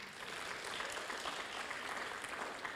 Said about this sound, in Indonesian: Oh, beri tepuk tangan pada dia